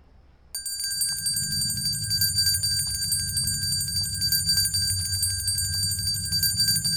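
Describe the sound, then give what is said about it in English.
A bell starts ringing abruptly and keeps ringing steadily for several seconds, a bright metallic trill over a low rumbling background. “Ring the bell.”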